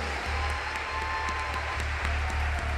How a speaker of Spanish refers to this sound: Aleluya. Vamos a darle un buen aplauso al Señor.